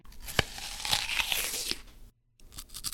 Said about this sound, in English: And those are two crunches. The first is a Honeycrisp apple. The second is a cheese puff.